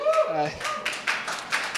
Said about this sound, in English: I'll tell her you applauded.